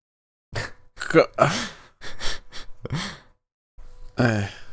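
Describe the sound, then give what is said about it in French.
Someone gasps and pants as if out of breath: a string of breathy bursts and voiced sighs, uneven in rhythm, with a short pause before a final heavy exhale. “Qu'est-ce que cette recherche de blague m'a essoufflé?”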